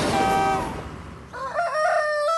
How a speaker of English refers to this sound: Cock-a-doodle-oo, went the rooster at McColl's Farm, just as team number three zoomed to a halt.